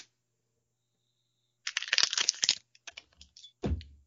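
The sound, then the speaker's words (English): A brand new whiskey bottle, bought that day, being opened: a second of dense crackling as the seal tears, a few scattered clicks, then a short hollow pop at the end. No one speaks. “I'm getting into a brand new bottle of whiskey that I just got today, and I'm very excited about it.”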